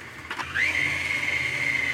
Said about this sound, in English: How do I mix this in my KitchenAid without exploding it everywhere?